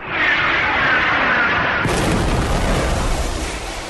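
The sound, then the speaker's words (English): A rushing whoosh with faint whistling builds for about two seconds, then a sudden loud explosion of a gas truck at the base of an old abandoned parking garage bursts in and rolls on as a heavy, crackling rumble, reducing the garage to rubble. No one speaks. “The explosion destroyed the freezer's hideout and burned up all the valuables of the extorted citizens of Cityopolis”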